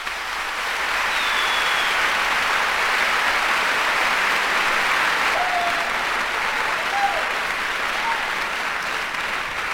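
Steady, dense applause from a crowd at the end of a music track fills the whole stretch, a bright crackling wash of many hands clapping at once with a few faint whistles rising above it.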